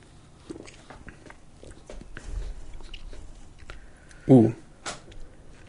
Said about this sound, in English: I gotta take a sip of this thing. It's just inviting me so much.